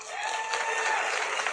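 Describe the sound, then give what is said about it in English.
Men in an audience clap steadily when prompted, a dense, even wash of many hands at a constant moderate loudness, with faint crowd murmur mixed in and no clear individual voice. “A lot of you guys maybe let me hear the men clap that are with women that you've never slept with before.”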